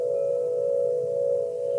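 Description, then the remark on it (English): Garden wind chime bells ring out as one steady, sustained mid-pitched tone that holds evenly at a moderate level for the whole moment, with no voices and only a soft low hum beneath. “That's a snippet of the bells that Billy and I were actually listening to.”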